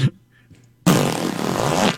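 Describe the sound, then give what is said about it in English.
After a near-silent moment, a zipper is pulled in one continuous stroke lasting about a second, a loud, raspy, buzzing rip. No one speaks. “That's a zipper.”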